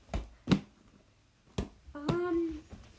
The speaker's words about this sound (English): Also, if you're wondering what the banging noise is, it is me talking about football while throwing the football around.